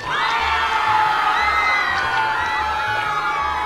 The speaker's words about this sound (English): More screaming. From City Hall?